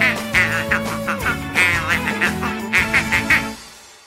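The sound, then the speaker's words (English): A duck quacks over and over in quick, uneven bursts, loud, with a low steady drone underneath before it trails off at the end. “Oh, he's quacking up, folks.”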